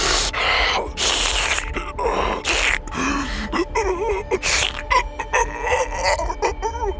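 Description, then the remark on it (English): A man gasps and chokes for air in loud, wet, ragged breaths, one strained heave after another with short catches in between, without any talk. “The man's face is turning a deep shade of red, and his breathing is coming in wet gasps.”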